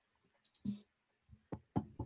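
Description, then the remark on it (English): Three sharp knocks on wood in quick, even succession, preceded by a softer thud and a brief pause, with no voices. “Knocking on wood right now.”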